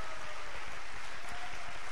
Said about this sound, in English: So clap your hands, all you people. Amen.